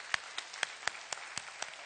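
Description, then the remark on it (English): Audience hand clapping in a steady, even rhythm, roughly eight sharp claps about a quarter second apart, fairly soft, with no voices over it. “Come on, let's give God a big hand clap for that one right there.”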